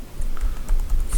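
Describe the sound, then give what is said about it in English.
A short burst of typing out a tweet on a computer keyboard, with several quick, uneven key clicks over a low background hum and no one speaking. “So I was typing out a tweet for requesting that that information on Makova.”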